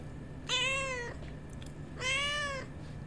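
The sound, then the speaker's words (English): A cat, Neapolitan, meows twice, each call drawn out and tonal, with a short pause between them. The meows are clear over a low steady background hum, with no one talking. “Yeah, it looks like we have the kitty up here with us again.”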